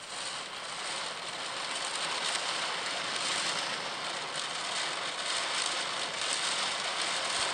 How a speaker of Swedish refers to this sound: Nice. Det regnar så hårt på taket. Man hör blåsen också, att det är så här. Det där att det kommer mycket så där. Det är för att det blåser.